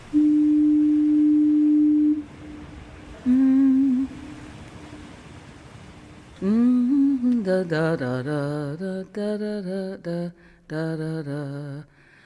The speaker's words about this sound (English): Of course, this isn't really the sound of fog. Fog is something you can't hear on the radio. This is a foghorn, a thing that evolved entirely because of fog. So it's kind of like the voice of fog.